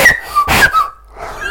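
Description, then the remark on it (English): A breathy, sputtering attempt at a loud whistle used to call a friend, not a wolf whistle: thin, wavering tones briefly break through rushes of blown air, never settling into one clean note. “It's where you call your mate.”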